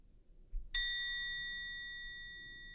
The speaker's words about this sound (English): It sounds kind of like one of the bells on the counters. Ding, ding. Yeah. doesn't sound like a ding-a-ling bell. I want the ding-a-ling bell, not the counter ding-ding bell.